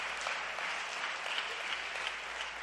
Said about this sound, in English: If you want to stop and clap, everyone, just clap every 30 seconds. It's good. Let's just keep clapping.